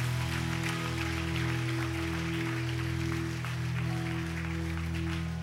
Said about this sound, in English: Keep clapping for them. Keep clapping. Keep clapping.